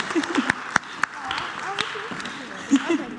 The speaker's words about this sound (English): Can we give them a big round of applause again? Well done. Good job.